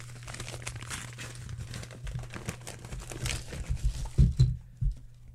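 Loud crinkling and tearing of Christmas wrapping paper as a Christmas gift is opened, a busy run of rips and rustles that grows sharper near the end, with a steady low hum underneath.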